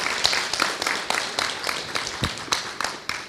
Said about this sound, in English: Round of applause for the …, guys.